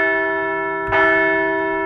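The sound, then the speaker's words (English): A bell rings with a steady, sustained tone, then is struck once more partway through, the fresh strike blooming bright and loud before resonating on. No one speaks. “Yeah, we'll ring the bell for that one.”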